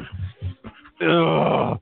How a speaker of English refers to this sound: I'm sorry, I'm yawning.